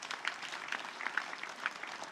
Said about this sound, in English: Come on, let's give God a clap offering for you.